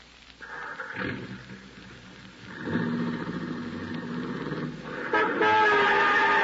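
A car horn honks in several long, insistent blasts, each louder than the last, during a near-miss between cars, with an engine rumbling underneath and no voices.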